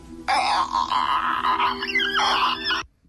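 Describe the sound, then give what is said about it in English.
A person voices a harsh, rasping monster screech, imitating a zombie. It is one loud, sustained cry of about two and a half seconds that wavers and gurgles before cutting off abruptly. “It makes it a bit less scary if you can make the monster sound yourself, I think.”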